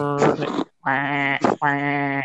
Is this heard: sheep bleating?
yes